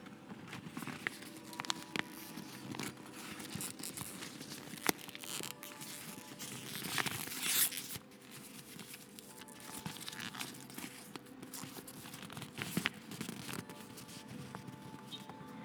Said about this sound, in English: But just to pledge my dedication to you all, I'm going to also let you hear what the bag sounds like for a little crinkly ASMR moment. Here we go.